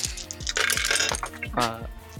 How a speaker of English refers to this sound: Tell me how I'm emptying out my entire dice bag and I see no d10s.